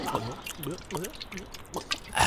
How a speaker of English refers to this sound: Here, get you a swig of this here alcohol I brought along in my good old tin bottle flask. It'll calm your nerves. All right, let me get a few sips of that.